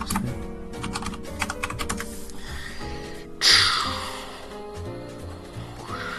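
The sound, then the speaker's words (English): Rapid clicking of keys on a computer keyboard, a quick burst of typing over steady background music, followed by a louder rushing swell midway, as someone types to look something up. “Keyboard sounds, here we come.”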